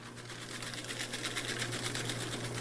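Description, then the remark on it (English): A paper shredder runs steadily, with a low motor hum beneath a rapid, rhythmic grinding and crackle of paper being cut. No one speaks. “thank you for shredding up all our papers”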